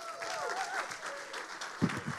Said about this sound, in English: If you would just give some a big round of applause while he comes on up.